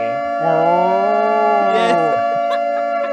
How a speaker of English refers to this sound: It's been a while since we've used the horse alarm. It's got to blow the dust off the horse alarm, yeah.